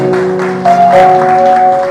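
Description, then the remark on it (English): An audience claps steadily in a dense, continuous patter for people coming forward to the front, with sustained musical tones humming underneath throughout. “At the back, please clap for them as they come.”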